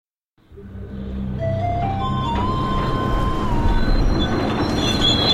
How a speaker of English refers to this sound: We're listening to the sound of a New York City subway car being dumped into Delaware Bay. In a moment, we'll find out why.